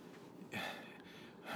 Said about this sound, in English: Why are you breathing so hard? Because I'm trying to explain myself.